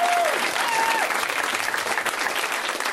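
A show's audience claps steadily for a few seconds, a dense, sustained wash of applause at an even loudness, with a brief whistle or cheer rising out of it near the start.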